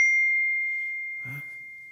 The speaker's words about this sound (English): and as you're getting ready for worship, your phone notification went off.